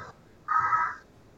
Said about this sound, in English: What was that noise? I have no clue. Sound like a crow. Yeah, some type of bird. It's probably one of the neighbors across the street.